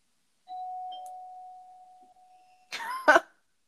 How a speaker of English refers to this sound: The doorbell went off, and there's two guys at the door.